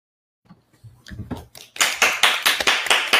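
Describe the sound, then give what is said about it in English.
Applause from a group of people after a speaker finishes a talk, starting with a few scattered claps and swelling into loud, steady clapping with a quick, uneven rhythm, with no voices. “Yeah, people are clapping.”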